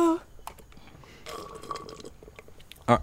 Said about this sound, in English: I was sipping from the bottom of my big gulp.